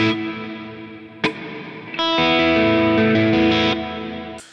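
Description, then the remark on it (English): An electric guitar plays sustained, ringing chords through a big stereo reverb, drenched in a wide, washy wash, with a few sharp strums cutting in and notes blooming and lingering. No talking, just the instrument, fairly loud. “And I've also got a stereo reverb, just a big old reverb.”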